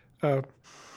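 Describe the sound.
Breathing through a BiPAP ventilator machine called a Trilogy, used during the day by a person with ALS: a brief voiced sound, then a steady airy hiss of machine-pushed airflow that continues to the end.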